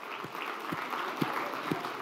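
A crowd applauds steadily, a round of applause for audience members who guessed each other's songs correctly: a dense wash of many hands clapping at an even level, with a few sharper claps standing out at regular intervals.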